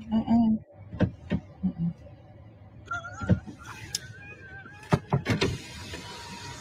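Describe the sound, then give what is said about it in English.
A door at a Cheesecake Factory restaurant clicks and creaks open with a few sharp knocks and a rising squeal, while voices murmur in the background. “Would you want me to open the door for you?”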